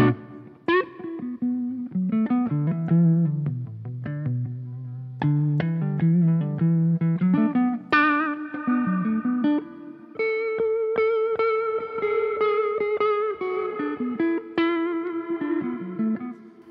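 Electric guitar, played on stage through an Eventide H9 effects processor, plays a melodic line of picked notes and chords, with reverb gradually mixed in so the notes ring out longer and wash together toward the end. No one speaks.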